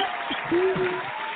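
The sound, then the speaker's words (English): A crowd at a panel claps steadily in a dense wash of applause as the executive producer and screenwriter are brought on, with a sustained high whoop or cheer rising over it midway through before the clapping carries on. “Let's go ahead and bring the executive producer and the screenwriter to the panel. Make some noise”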